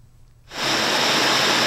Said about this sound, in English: Braised pork belly bubbles in a pot.